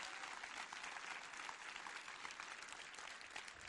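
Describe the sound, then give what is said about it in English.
A church audience claps steadily for several seconds for veterans, a dense, even wash of many hands at a moderate level with no voices rising above it. “Can we give them a applause?”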